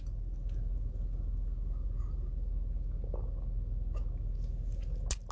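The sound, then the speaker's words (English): Someone gulps ice-cold water, with a few wet mouth clicks and swallowing sounds scattered over a steady low hum, ending in a sharper smack. No one speaks. “I know, a whole bunch of mouth noises.”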